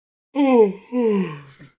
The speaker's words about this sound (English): It's you're gonna make me yawn. No, honestly, that yawn was not intentional, but then it became intentional.